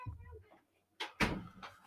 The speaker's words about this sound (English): Close the door.